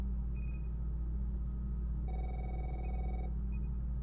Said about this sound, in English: Do I hear a telephone? That's not the bridge phone. Where is it? It is sounding muffled. Perhaps the mold has eaten it.